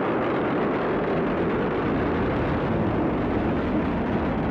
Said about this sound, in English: Liftoff of SpaceX's Falcon 9 rocket for the 26th cargo resupply mission, bringing new science experiments and solar arrays to the International Space Station.